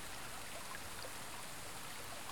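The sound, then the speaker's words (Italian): Steady rush of water splashing and pouring from the enormous marble Fontana dell'Acqua Paola in the Janiculum park in Rome, a continuous dense hiss with faint droplet patter, fairly soft and even throughout with no voices. “Next up in the park is the Fontana dell'Acqua Paola, an enormous fountain made of marble.”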